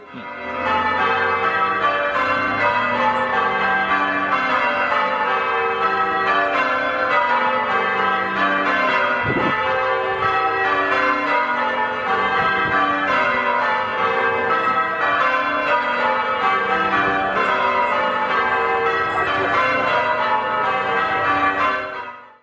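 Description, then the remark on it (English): A carillon of church bells at St Andrew's church in Bundaberg, Australia rings out a steady, continuous melody, many bright tuned bell strikes overlapping with long ringing tones, fairly loud and unbroken with no talking. “St Andrew's has been in existence for a very long time, and that's a carillon.”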